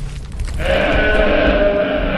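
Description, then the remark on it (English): A person imitates a goat with a single drawn-out, wavering bleat, loud, to communicate with a goat, starting after a brief moment of background noise and holding steadily to the end. “let's try making some goat impressions to communicate with our friend here.”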